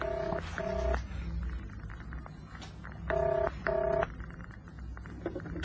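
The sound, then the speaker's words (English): A telephone number is dialed: four touch-tone telephone beeps are keyed in two quick pairs with a pause between them, each a steady two-tone chirp lasting a fraction of a second over a low background hum. “Okay, here goes. One, 2, 3, 6.”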